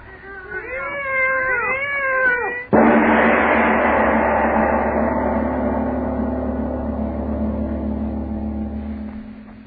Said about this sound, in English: Lona, listen to them. They're not ordinary cats.